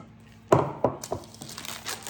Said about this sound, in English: Okay, I'll peel the paper off. And I just used that paper again, so I'll just put that aside.